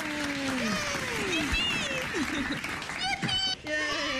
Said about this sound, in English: There we go. Yay! There we go. Claps for you. Thanks, claps man. For you.